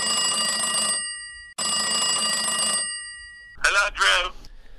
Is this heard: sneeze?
no